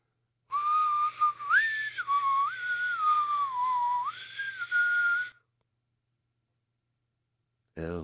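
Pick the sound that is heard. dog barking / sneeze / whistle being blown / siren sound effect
whistle being blown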